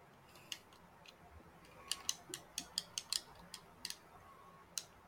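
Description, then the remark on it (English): Someone chewing food loudly: about a dozen sharp, crisp crunching clicks in an uneven rhythm, bunched together in the middle, with no talking over them. “Are you done chewing?”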